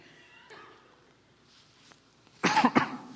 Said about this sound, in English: Y'all made me cough.